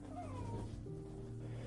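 A dog gives faint, squeaky whimpers: a thin, high-pitched whine that rises and falls, then trails into a lower, steadier moan, with no one talking.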